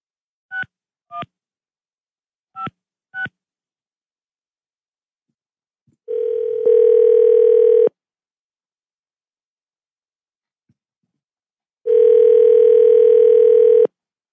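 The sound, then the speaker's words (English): Four quick keypad beeps of a phone being dialed on a radio show to call a listener about giving away concert tickets, then two long steady ring-back tones separated by a pause, heard clearly with no one talking. “Well, let's give it a shot here real quick. Go to the phones. Beep, boop, boop, beep, boop.”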